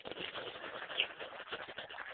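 Soft, low cooing of a bird, like a pigeon or dove, murmuring steadily with a slightly rough texture, fairly quiet, with no talking.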